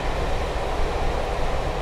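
A train on the route from Shrewsbury to Crewe braking and slowing down as it passes land being cleared, heard as a steady, dense rumble with deep low-end weight and a broad hiss above, holding even in loudness with no voices.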